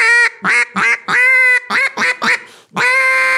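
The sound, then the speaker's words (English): A duck call is blown, making a loud series of about eight nasal quacks, short choppy ones mixed with a few long drawn-out notes, as the caller tries to find the duck note, with no talking. “You hear how I'm trying to find that duck in there?”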